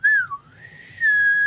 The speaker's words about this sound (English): You gotta do something. You better do something. I can inward whistle.